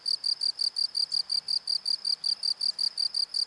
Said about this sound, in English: But as a relatively light sleeper, once the clock hits 3 a.m., one group of critters in our little apartment that I never grew to love were the crickets.